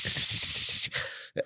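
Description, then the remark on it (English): A person hisses through their teeth like a snake speaking over the radio, a long, loud, static-like rush of air that breaks off briefly and ends in a couple of short, sharp bursts. “And then you and then when you speak on the radio, they just think it's static because you're just going.”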